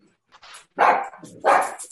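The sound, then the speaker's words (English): A 10-pound female miniature dachshund barks twice, sharp and loud, the yaps spaced about three-quarters of a second apart with softer snuffling noise between them. “It's like a fucking 10-pound miniature dachshund.”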